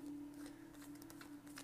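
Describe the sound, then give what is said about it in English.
Quiet, papery bursts of a Rider-Waite tarot deck being shuffled, a few quick riffles in an irregular rhythm, faint over a steady low electrical hum. “Shuffling the Rider-Waite Tarot.”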